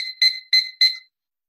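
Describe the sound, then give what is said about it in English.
A magnetic kitchen timer beeps four times in quick succession, sharp, high-pitched electronic tones that start abruptly and fade briefly before the next, loud and alone with no voices. “These timers are so great. They make loud beeps.”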